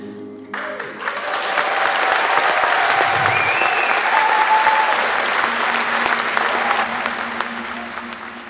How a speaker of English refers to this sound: As the crowd cheers